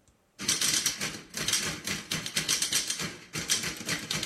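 Dense, rapid typewriter clacking played as percussion, several machines hammering keys in loose rhythmic bursts with brief pauses, loud and close, no voices.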